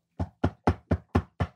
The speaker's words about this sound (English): If you do possibly have COVID, knock on wood. That was me knocking on wood here.